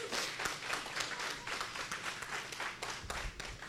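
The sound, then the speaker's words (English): A crowd gives a clap offering, clapping together in a steady, dense wash of overlapping handclaps that stays fairly even in loudness for several seconds, with no voices standing out. “Let's give Edith a clap offering.”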